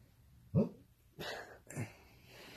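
A dog whimpering and woofing in its sleep while dreaming lets out a high whimpering yelp followed by two muffled, breathy woofs, three short soft sounds spaced about half a second apart, with no talking.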